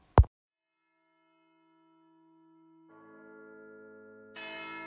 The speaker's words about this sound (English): To his great astonishment, the heavy bell went on from 6 to 7 and from 7 to 8 and regularly up to 12, then stopped. 12? It was past 2 when he went to bed. The clock was wrong.